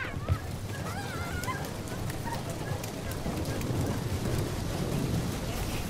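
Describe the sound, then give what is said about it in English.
An audience makes a loud, dense storm sound, a steady roar of clapping and banging on tables that imitates a violent storm of heavy rain and thunder, with a few faint whistles and voices mixed in. “If it was a really violent storm, what would that sound like?”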